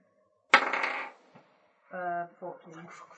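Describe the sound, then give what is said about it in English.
A sharp clattering burst as a twenty-sided die (d20) is tossed onto a hard surface for a spell resistance roll, rattling briefly before settling with a faint tap, followed by people talking. “Make me spell resistance, please. Me? D20 and add 10.”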